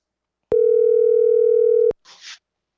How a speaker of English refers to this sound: Okay, it's ringing. That's good. That's a good sign. It's ringing.